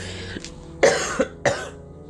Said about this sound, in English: I still have a little bit of cough from those allergies, but we're just gonna let it hit to the side.